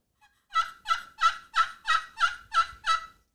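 A series of eight evenly spaced turkey yelps played on a cherry pot call with a plain glass surface, each note raspy and high-pitched with a clear, ringing tone, sounding alone without any talking.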